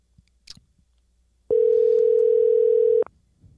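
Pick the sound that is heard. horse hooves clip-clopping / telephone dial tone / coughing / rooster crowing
telephone dial tone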